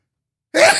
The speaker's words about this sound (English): Wow. Bless you. It knew I was going to sneeze. How did it do that?